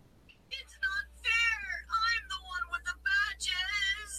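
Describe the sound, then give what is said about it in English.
A human voice screams a rapid string of high, strained meows on the way down while falling, loud, each cry rising and falling in pitch over about four seconds, imitating a cat. “You just scream meow on your way down.”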